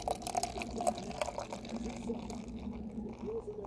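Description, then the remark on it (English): Beer glugs from the second of two cans into a brand-new cup, a steady pour with gurgling, splashing liquid and a faintly rising fill tone over a few seconds. “Crack the twofer. The twofer. Pour the second.”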